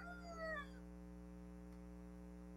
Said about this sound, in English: It was a rooster. Oh yeah, could you hear that? Yeah, it's I do live out in the country. I apologize, folks. I do have a rooster right out my window.